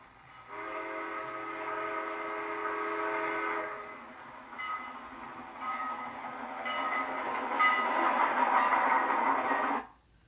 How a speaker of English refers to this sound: And sounds from human inventions like trains.